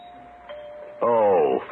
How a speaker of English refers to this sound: Why is he ringing the doorbell after I left him that note?